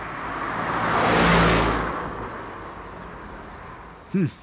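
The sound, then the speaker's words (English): A car approaches along a road and swooshes past, its whooshing roar swelling to a peak and then fading away, followed by a brief high chirp near the end. “There's bound to be another car eventually.”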